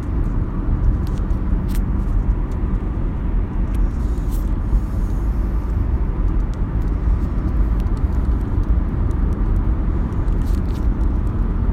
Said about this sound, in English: Fucking train. Oh, there's the end of it. So maybe I should have waited it out.